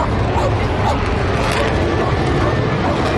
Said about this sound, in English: As Sam's coming over towards Strand Park, there's literally thousands of people here along the Strand watching this great aircraft, the F-35. Here we go. Have a little listen to this. See it coming? Here it comes.